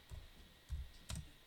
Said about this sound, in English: Can you hear me typing, John?